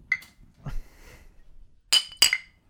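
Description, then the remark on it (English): Glasses clinking together in a toast: one bright clink, a short pause with faint rustling, then two quick, ringing clinks, with no voices. “cheers, Robin Williams”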